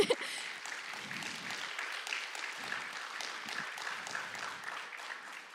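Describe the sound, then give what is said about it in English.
An audience at a worship gathering breaks into a round of applause for the people who moved things back and forth to set it up, many hands clapping in a dense, steady wash that holds at an even level for several seconds without letting up. “Can we give them a round of applause for that?”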